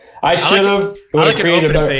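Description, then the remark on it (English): A spoon stirs layered Frosted Flakes and Captain Crunch cereal together in a bowl in two loud bursts separated by a brief pause, with clinking, scraping strokes and a ringing, tonal squeal against the dish. “I'm gonna mix now. So they're all together.”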